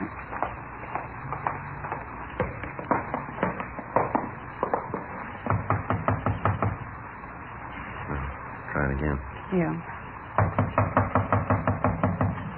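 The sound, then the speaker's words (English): Police officers knock on a door with repeated sharp knocks in several rapid bursts, loud, with brief pauses between rounds and a voice calling out in the gaps. “Not answering. Come on, open up in there. We know you're in there. Come on. Open the door.”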